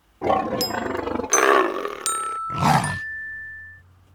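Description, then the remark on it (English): A lion roars in three loud, throaty bursts, close and full, like a film studio logo intro, with thin ringing tones laced through before it trails off into quiet. “At least I was told it was Stephen the Lion, the MGM Lion.”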